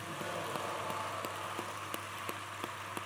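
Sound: audience applause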